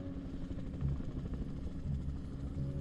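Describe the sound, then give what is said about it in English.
A self-flying helicopter with no pilot approaches from the distance toward a rooftop, its rotors churning with a steady, low-pitched thumping drone, constant in volume, with no voices present. “A helicopter approaches from the distance, and as it does, you squint to see who's flying it.”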